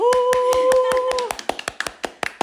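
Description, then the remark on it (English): Steady, rhythmic hand claps ring out loud, with a long, held voiced cheer over the first half before the clapping carries on alone, welcoming a co-host. “And on the other side, a round of applause and the cheers, it's”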